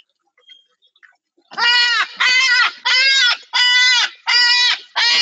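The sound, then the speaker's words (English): A pet parrot's alarm call blares out in six loud, harsh, bleating squawks, each about half a second long, repeated in a steady rhythm after a moment of near silence. The parrot makes this call when it sees a hawk. “He watches for hawks, and when he sees one, he makes that noise, and they usually will go away.”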